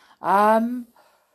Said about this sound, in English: While I yawn.